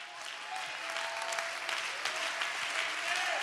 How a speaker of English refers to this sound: My God, if you don't like what I'm preaching, you ought to clap anyway.